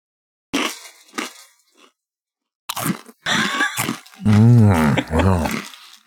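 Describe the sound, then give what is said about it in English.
Loud crunching as a crunchy cheese snack, crunchier than Cheetos, is chewed in several bursts, followed by a drawn-out, growly appreciative voice sound from the person eating. “Ooh, really good crunch. It's got a great crunch.”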